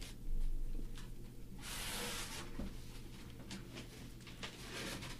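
Cardboard handling: a loud, hissing rip of packing tape being cut through, surrounded by scattered short scrapes and rustles as the box is worked open. No voices.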